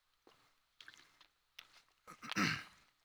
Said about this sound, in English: I'm going to have to get a drink of water. I'm so sorry. Throat's getting dry.